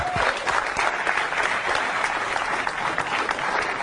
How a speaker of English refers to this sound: I would argue that there was not enough clapping for that part right there.